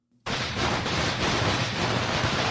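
A string of firecrackers set off for the New Year bursts into a dense, loud crackle of rapid pops, blending into a continuous roar that keeps going without a pause to the end.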